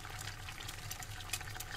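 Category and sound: food or drink, eggs frying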